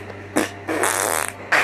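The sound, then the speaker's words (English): Three loud fart noises in quick succession, a short blast, then a longer drawn-out raspy one, then another short burst cut off at the end, with no talking. “Beat your beans to fart like this!”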